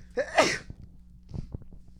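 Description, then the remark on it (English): A single sharp sneeze bursts out loudly, followed by a few faint breaths and small rustling sounds against a low steady hum. “I gotta sneeze.”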